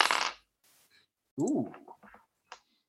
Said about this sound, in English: I should roll in this, I guess. Oh, no. I'm going to get that nice clicky-clackety dice ASMR going.